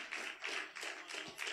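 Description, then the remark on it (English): An audience claps together in a steady, rippling burst of applause that swells and dips in waves, with no voices over it. “Oh, that's a good place to clap your hands at right there, you know.”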